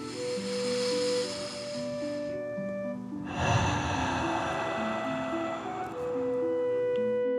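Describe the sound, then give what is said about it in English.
A slow, deep breath is drawn in through the nose, then pushed out audibly through the mouth in a longer, breathy exhale, over soft, steady instrumental music. “Breathing in through your nose and breathing fire out of your mouth. Again, deep breath in and out.”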